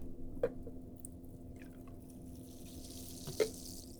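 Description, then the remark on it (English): About 3 ounces of tonic water pours into a goblet wine glass, topping a drink, with a soft, steady liquid rush and a faint fizzing hiss that rises toward the end, marked by two sharp clinks, with no one talking. “And now, top the drink with 3 ounces of tonic water.”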